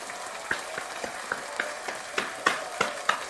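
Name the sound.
round of applause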